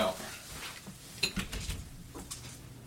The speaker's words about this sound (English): Oh, can you open that door? Yeah. I have an intruder.